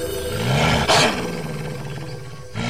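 A loud wolf growl swells into a harsh, breathy roar near the start, then trails off into a low rumbling snarl, heard alone with no talking.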